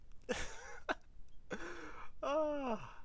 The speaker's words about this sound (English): I have a cough.